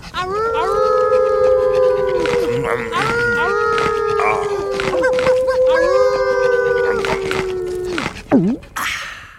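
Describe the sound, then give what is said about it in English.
Wolves howl in long, wavering, overlapping tones that rise and hold before sliding down, ending with a brief whimpering whine as a wolf is offered a bone. The howls are loud, with no talking. “Aw, Wolfie want a bone? Here you go, boy. Enjoy. Nice wolf.”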